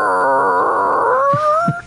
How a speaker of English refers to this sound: Dog in the studio.